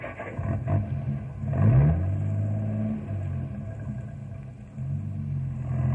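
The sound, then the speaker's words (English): A truck carrying a sled that sticks about 2 feet off its back turns over and revs up with a rising growl, then settles into a steady, low rumble as it idles and pulls away, with faint clattering underneath. “Let's get in the truck and go.”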